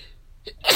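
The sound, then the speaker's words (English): A sneeze: a brief catch of breath, then a sharp, loud, breathy burst right at the end. No one speaks. “Blessed be.”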